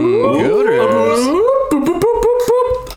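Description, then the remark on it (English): A voice imitates a siren, wailing in loud sliding pitch sweeps that rise and fall, then settling into a held, wavering tone broken by a few sharp clicks. “I'm working on my siren noises too.”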